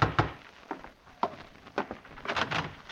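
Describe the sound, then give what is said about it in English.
Heavy fists pound on a wooden door in an irregular series of dull, booming thuds, with a few quicker knocks near the end and no voices. “Open! Open the door!”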